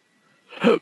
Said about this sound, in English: Oh, my God. I've never sneezed this much in years.